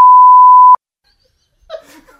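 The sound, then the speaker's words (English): A loud, steady censor bleep tone holds for under a second and cuts off abruptly, followed by a brief pause and then soft laughter. “Can we go right over that with a beep?”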